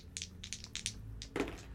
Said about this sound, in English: I don't like he's rolling dice in the background. Yeah, it's not great. It's never great.